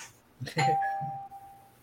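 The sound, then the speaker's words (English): A doorbell chimes once, a bright struck tone that rings out and slowly fades over a second or so, with no talking over it. “The fuck is ringing your doorbell?”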